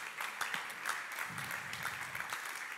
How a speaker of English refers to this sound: And so I believe that God wants to use Extraordinary Church to make a profound difference in this region. If you believe that, somebody ought to clap their hands unto the Lord.